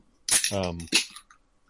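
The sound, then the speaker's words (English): A loud can being handled and opened: a sharp, hissy metallic crack, a brief ringing tone, then a second crisp burst, all over in about a second. “Wow, that is one loud ass can you got there, my friend.”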